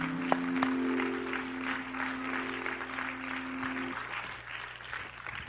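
An audience at a church service claps hands steadily for several seconds, dense applause given to God after a prayer, with a sustained low tone underneath that fades out partway through.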